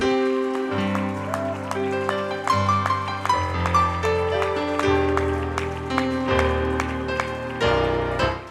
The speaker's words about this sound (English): I wonder one more time, could we clap our hands unto the Lord and give him praise?